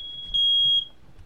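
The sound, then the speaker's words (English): A single loud, piercing smoke alarm beep, set off by a home oven turned above 400 degrees while chicken nuggets cook, a steady high-pitched tone lasting about half a second over faint room noise. “Bear with me. We have a smoke alarm going off.”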